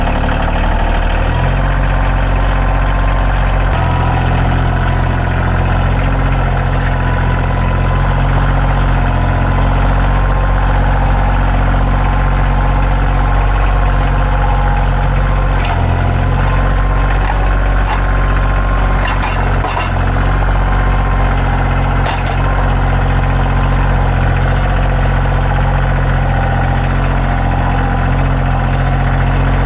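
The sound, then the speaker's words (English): A tractor engine idles steadily throughout as it warms up after starting. It is a loud, low rumble with a constant throbbing hum and a few faint clanks and rattles partway through. “my brother is just warming up his tractor.”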